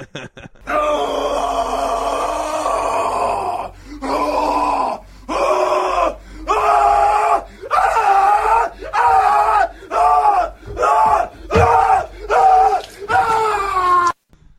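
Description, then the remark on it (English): A man performs an anguished death scream in the style of Nick Cage in the film Mandy: one long, loud, strained howl, then a string of about ten choppy, sobbing wails in quick rhythm. “We're going the Nick Cage from Mandy a death scream.”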